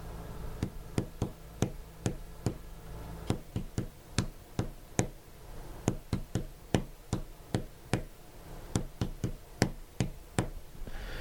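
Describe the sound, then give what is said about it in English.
A series of sharp knocks or taps on a hard surface tapping out the tune of Happy Birthday, about two dozen in an uneven, song-like rhythm with short pauses between phrases, with no voices. “You did happy birthday?”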